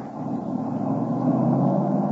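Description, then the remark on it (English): A car carrying Al Benton drives away, its engine rumbling steadily throughout, a continuous low drone of a moving vehicle with no voices, holding at an even level. “Benton in that car?”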